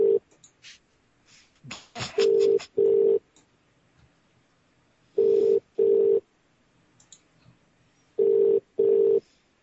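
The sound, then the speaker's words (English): A telephone rings in three double bursts, each pair of steady mid-pitched tones repeating after a pause, with scattered clicks and rustling before the first ring and no one speaking. “That damn phone.”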